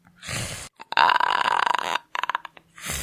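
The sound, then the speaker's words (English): A person imitates a velociraptor with a raspy, throaty screech. A short growl leads into a long, rattling shriek, followed by a few choppy bursts and another growl, with no talking. “My dad used to pretend to be a velociraptor. What does that sound like?”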